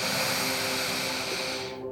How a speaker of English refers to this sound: Let's go ahead and take 3 deep breaths here. Breathing in new, fresh, clean air.